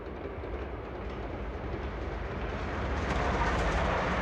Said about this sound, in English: And if you consider the same exact train that has built up that momentum, is in full motion, and you put a brick wall in front of it, guess what?